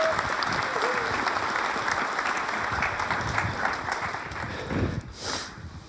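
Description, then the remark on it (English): An audience claps steadily for a woman, a dense wash of many hands ringing for several seconds before tapering off near the end. “Let's give this sister a real round of applause.”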